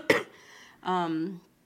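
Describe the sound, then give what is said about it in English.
A person who is still sick gives a single sharp cough, followed after a brief pause by a short, voiced, throaty groan. “Damn, I still have this cough, yo.”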